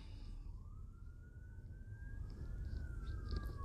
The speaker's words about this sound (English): so like I said, and there's a siren. So, a couple of them looks like police.